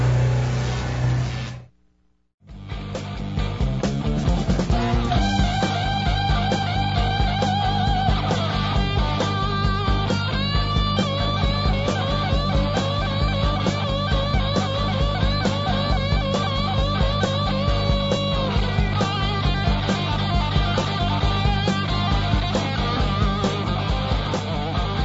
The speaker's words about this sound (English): It's Friday, so I'm letting that guitar wail a little bit there.